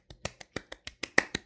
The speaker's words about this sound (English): And also, I had my last real estate course exam and I passed, bitches. I'm gonna clap for me.